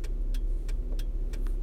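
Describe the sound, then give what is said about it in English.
A car engine idles steadily with a low, constant rumble, while faint periodic ticking clicks sound over it about every third of a second. “But, is that car going? Are you going, sir?”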